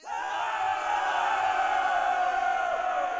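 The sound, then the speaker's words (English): A large crowd cheers and yells together in a sustained, loud roar of many voices, steady throughout with no pauses. “There arose a great cheer, and thus the lifeblood crossing was liberated.”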